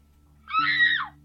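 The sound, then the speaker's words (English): A single high, wavering scream rises and then trails downward, lasting under a second. It sounds somewhat distant and is set against a steady low hum. “But you do hear a scream in the distance.”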